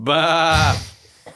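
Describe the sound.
A person imitates a sheep with a single loud, quavering bleat lasting under a second, which trails off into a breathy exhale, followed by a brief faint sound.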